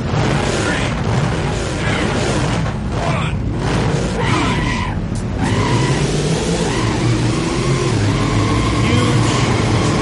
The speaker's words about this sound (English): Jet engine mounted on the back of that default car that just drowned out all other sound, especially in the arcade version.